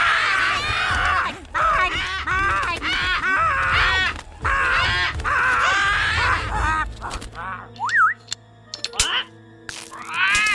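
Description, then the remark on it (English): A parrot named Petey squawks loudly in long, raspy bursts of harsh calls, then pauses before a short rising whistle and a few more scratchy squawks. “Our neighbor was giving away their parrot.”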